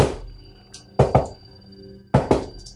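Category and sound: sound effect, heartbeat sound effect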